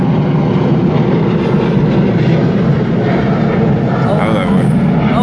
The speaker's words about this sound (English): Hold it. All right. Had to let the plane go by.